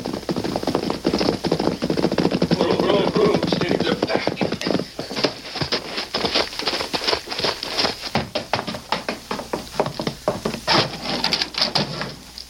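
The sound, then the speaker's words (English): Repeated sharp knocks on a wooden door ring out in an uneven rhythm, following a few seconds of muffled shuffling and movement. “As soon as they get inside, you go up and knock on the door.”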